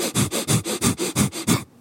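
A rapid, steady run of about ten sharp, forceful breaths pushed in and out through the nose during a fire breath breathing exercise, each a crisp airy burst, loud and evenly paced before stopping abruptly.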